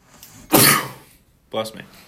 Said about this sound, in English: Bless me. Yeah, sorry. Excuse me for sneezing.